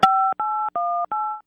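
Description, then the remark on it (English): Four steady touch-tone keypad beeps from a caller's cell phone, each a clean dual-pitched tone lasting about a third of a second, separated by brief gaps, loud with no voices. “You might be hitting your ear or redial or something there.”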